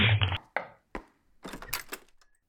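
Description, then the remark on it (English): A front door is unlatched and opened: a heavy thunk, a couple of sharp knocks, then a brief flurry of clattering and rattling from the handle and frame. “I'm going to get the door.”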